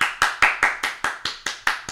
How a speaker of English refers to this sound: 390,000 people clapping. Can you imagine what that sounds like? We think we're having an 8 on the Richter scale earthquake.